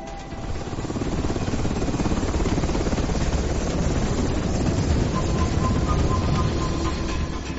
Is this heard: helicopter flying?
yes